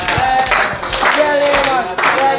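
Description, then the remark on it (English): Loud, steady clapping from a crowd applauding a boy, with rhythmic bursts layered over a dense wash of hand claps and voices calling out underneath. “I say clap for this boy.”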